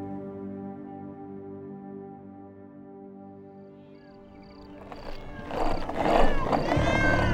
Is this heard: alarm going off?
no